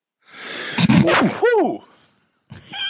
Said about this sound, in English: That was... that sneeze came with a little cheer. You had your own hype man on that sneeze.